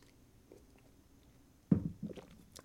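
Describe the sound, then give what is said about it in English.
A quiet pause, then a brief sip of coffee followed by a couple of soft, wet gulping sounds, heard alone with no talking. “So let me take a sip of this coffee and let's get the cards in the air.”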